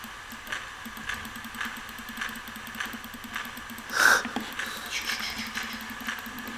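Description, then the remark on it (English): A video game plane engine drones steadily at a low, rapidly pulsing idle, fairly quiet and continuous, with a brief sharp burst of noise partway through. “The problem is you can't destroy planes unless the engine's running, which is kind of shit.”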